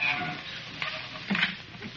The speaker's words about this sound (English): Shall I shut the door? Yeah. And watch it doesn't squeak on you.